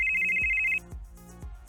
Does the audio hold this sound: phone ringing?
yes